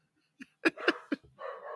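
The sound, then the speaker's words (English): A voice imitates a dog barking: a few short, sharp yaps in quick, uneven succession, followed by a longer rough, breathy sound at the end. “Bark.”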